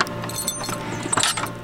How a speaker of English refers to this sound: We head outside and over to another warehouse. Let me unlock the door here.